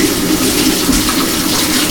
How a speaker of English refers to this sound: And now, I'm going to rinse my fingers again.